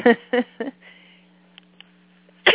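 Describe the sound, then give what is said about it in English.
Three loud, sharp sneezes burst out in quick succession, followed by a quiet stretch with a faint steady hum and one more loud burst at the very end. “I may need to lead the sneezing group.”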